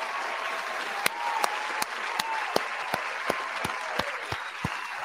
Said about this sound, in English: Round of applause for y'all. Let me pull a little applause up. Round of applause for the chat, man.